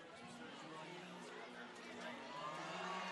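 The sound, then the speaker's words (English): A football stadium crowd at Crozier Keystone Stadium roars as the second half is about to begin. A dense, steady wash of cheering and chatter swells slightly louder toward the end, with no single voice standing out. “Crowd's coming alive here at Crozier Keystone Stadium.”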